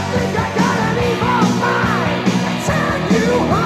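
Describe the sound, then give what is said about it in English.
Several voices shout a line of a song together, "There's no respect on either side", loud, a dense ragged chant with rising and falling pitch that carries over a backing of music for a few seconds. “And they're shouting it.”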